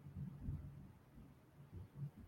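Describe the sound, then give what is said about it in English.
A low, faint rumble of thunder rolls through in soft, uneven swells, deep and muffled, with no voices over it. “Oh, we're getting some thunder here now.”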